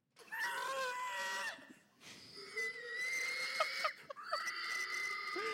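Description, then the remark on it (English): A man lets out shrill, wavering squeals imitating a pig in a hog call, three long strained cries with brief breaks between them, loud and high-pitched with no other talking. “And he is like the human equivalent of a squealing pig.”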